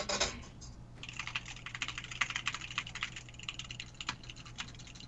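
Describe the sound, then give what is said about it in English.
Rapid, irregular clicking like fingers typing on a computer keyboard, dozens of light taps in quick succession over a faint steady hum, with no voices; the sound of the game Guns the Duel as the player moves the camera. “It sounds like typing.”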